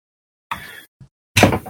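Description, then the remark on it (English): A small Sam figurine is knocked over on a desk: a rattling clatter, a soft thump, then a louder, longer clattering knock as it settles, with no talking. “I knocked over my Sam figure.”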